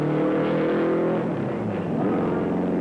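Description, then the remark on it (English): The engine of a Novi race car revs loudly and continuously on a track during qualifying, its droning tone shifting in pitch about midway before settling into a steady roar. No voices are heard. “He stroked the powerful engine for a lap or two and then put his foot on it.”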